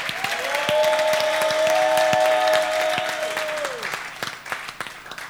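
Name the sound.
audience clapping and shouting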